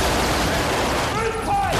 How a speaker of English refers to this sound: Yeah, you can hear some of the like the gunfire there. So these are actual weapons, like, you know, shooting blanks. But, I mean, there is so much gunfire happening in this one sequence.